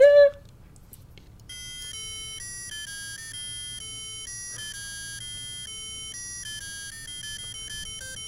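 A short, sharp tone bursts out, then a bright electronic melody of sustained, buzzy synth notes steps between high pitches at a steady, moderate level, with no one talking over it.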